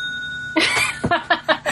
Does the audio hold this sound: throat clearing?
no